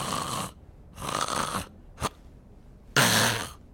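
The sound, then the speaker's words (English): A voice imitates loud snoring: three rough, raspy snorts with a short snort between them, the last one loudest, with no talking. “I mean, snoring is just so off-putting.”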